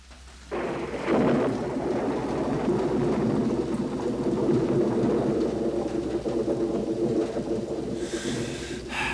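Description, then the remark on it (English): Steady rain falls while a long, low rumble of thunder rolls in after a brief quiet start, swelling and lingering across the whole stretch with no voices. “Nothing to do on a rainy day and no one to play with”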